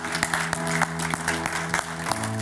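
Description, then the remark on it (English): A room full of people claps steadily to celebrate two people, a dense patter of hand claps carried over sustained music playing underneath, lively and fairly loud throughout. “And we can't yell, but we can clap.”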